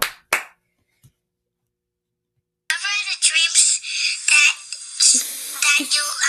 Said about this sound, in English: I needed an applause for that.